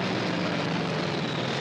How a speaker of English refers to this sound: You are listening to the sounds of an F-4U Corsair, a clean, sleek aircraft with a 2,000-horsepower engine. Its rated speed of 415 miles per hour at sea level made it the fastest aircraft in the Pacific Theater at the time,